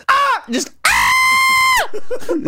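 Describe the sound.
A person lets out a loud, high-pitched shriek, imitating an old intro call: a short rising cry, then a longer sustained scream held for about a second before breaking off into murmured voice sounds.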